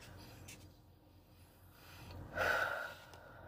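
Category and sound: human body sound, slow deep breathing exercise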